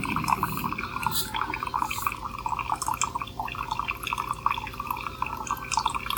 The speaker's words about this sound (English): That's taking a little longer than it normally would to fill the cup because I choose strong brew, which means that it pours grounds in the pot a little bit more slowly.